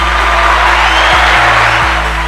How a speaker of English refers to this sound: So we're going to give him a round of applause.